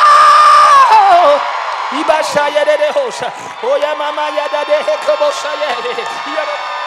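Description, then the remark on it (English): A preacher lets out a loud, drawn-out scream in praise that slides downward, followed by rapid, strained shouting with a ringing, echoing quality. “if my scream is getting on your nerves, you got to come up to the praise realm.”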